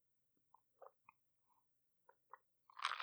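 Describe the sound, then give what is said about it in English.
A few soft, scattered clinks and taps, like ice shifting in a glass, followed by a short, breathy slurp of iced spiced tea. No one speaks. “After all of that talking up and talking about how delicious my tea is, I've healed up enough, I've taken time away enough, that I barely need a sip or something.”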